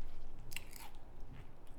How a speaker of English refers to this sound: He's munching away. He's deliberating.